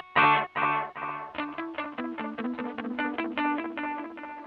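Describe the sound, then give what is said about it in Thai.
An electric guitar, played through a Keeley Caverns delay pedal set to simulate two delays, plays a few strong picked chords, then a quick run of notes smeared into a dense, overlapping cascade of echo repeats from stacked delays, sustained and fairly loud with no voices. “ใช่ครับเป็นคีรีคาร์เวนครับผมเป็นดีเลย์กับรีเวิร์สผสมกันก็คือผมต้องการดีเลย์สองตัว อ ันนี้ดีเลย์ตัวเดียว นี่คือการดีดหนึ่งครั้ง แล้วก็อันนี้สมมุติเป็นดีเลย์สองตัว”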